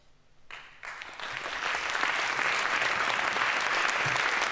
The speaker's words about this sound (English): I think that deserves a canned round of applause. So we have a canned round of applause sound effect,